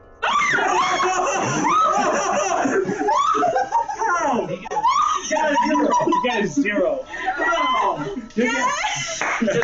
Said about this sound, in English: Also, that scream would have been wasted.